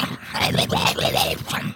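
A continuous dog-like growl with rising and falling whiny tones, lasting under two seconds and sounding as if a human voice is imitating a dog.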